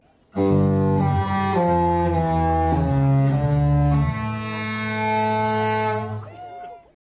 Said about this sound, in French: C'est sûr que si vous vous rouvrez les yeux puis vous regardez dehors après avoir entendu les sirènes de bateau, vous allez voir que c'est moins tentant avec la température qu'on a.